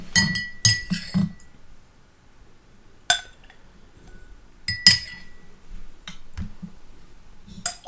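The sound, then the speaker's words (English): A spoon clinks against a whiskey glass of bourbon in short, bright strikes as half a spoonful of water is added: a quick cluster of taps at first, then scattered single clinks and a few more taps near the end, with no talking. “Okay, so now we're going to add a half a spoonful of water and see if that makes a difference.”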